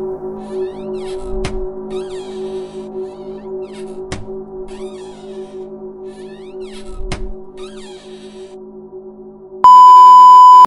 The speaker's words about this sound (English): You nearly leap from your skin when your phone beeps. A text from an unknown number.